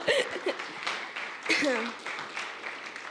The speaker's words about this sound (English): So I just want to say thank you. Give your guys a round of applause.